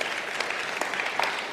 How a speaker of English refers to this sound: You can clap. That's good.